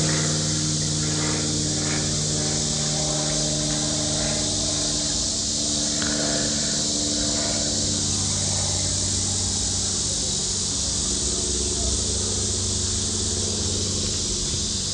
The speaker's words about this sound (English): I'll pause for the aeroplane.